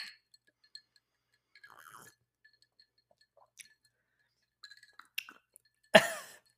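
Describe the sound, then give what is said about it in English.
A single sharp, ringing clink of drinking glasses tapped together in a toast, loud, near the end, preceded by a few faint clicks and light handling noises. The glasses hold a cocktail of rum, spiced rum, lime juice, absinthe and soda water. “Let's clink and dink, man.”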